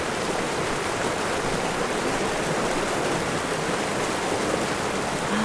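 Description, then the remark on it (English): A steady, dense roar of rushing water from a waterfall, broad and constant throughout with no pauses, fairly loud, with no voices over it. “Waterfall is so relaxing.”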